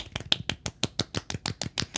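A single person's soft golf clap: about a dozen light, quick claps in a steady rhythm, moderately quiet and crisp, with no voices.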